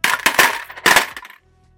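Coins clatter and jingle in two quick bursts, a bright metallic rattle of several pieces landing and settling, then silence. No one speaks.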